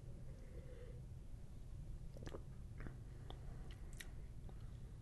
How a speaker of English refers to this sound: Gonna need another sip here.